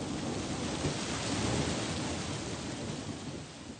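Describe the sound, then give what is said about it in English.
Steady, dense rainfall hisses evenly throughout, with a low rumble of thunder swelling through the middle before easing off. No voices, just the continuous wash of a storm. “However, it started to rain.”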